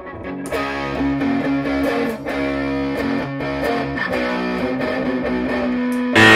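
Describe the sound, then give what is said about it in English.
Loud, gritty distorted electric guitar, played without a distortion pedal, playing a run of sustained chords and notes for several seconds, with no one talking, swelling into a brighter, noisier burst at the very end. “I mean, I don't need a distortion pedal. Listen to that.”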